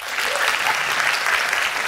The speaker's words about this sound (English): Clap here if you are in now or are studying to be in the film industry.